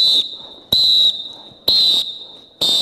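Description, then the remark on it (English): A whistle is blown in four sharp, shrill blasts spaced under a second apart, loud, each one ringing on and fading slightly before the next. No one speaks. “Well, I'm telling you today, I'm here to blow the whistle.”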